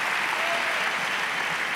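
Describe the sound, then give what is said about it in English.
A church audience claps in a steady, dense wash of applause as the preacher urges them on. Many hands overlap into a continuous crackle that holds even in level from start to finish. “Clap on.”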